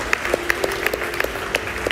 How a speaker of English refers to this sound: So I just want to say, if that was your first time today saying, I have made a decision to follow God, number one, I just want to clap and just say, awesome. Like, praise God.